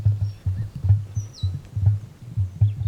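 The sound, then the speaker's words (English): Deep, rumbling grunts from an emu repeat in a steady pulsing rhythm, prominent, with a few faint, thin bird chirps high in the background. “What a surprising nature sound. And what a cool animal. A bird that doesn't sing. It grunts and it doesn't fly.”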